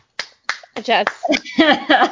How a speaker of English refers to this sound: I want to do all the snaps, all the claps for him because, like, so often, like we've already talked about, like, so often people give that list of to do and not to do on the Sabbath day.